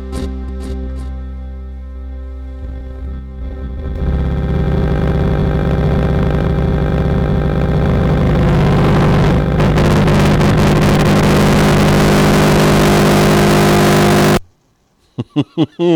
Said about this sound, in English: Was that a motorcycle and then a fart being ripped?